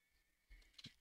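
A brief horse whinny rises suddenly near the end, short, over a low rumbling background with no talking.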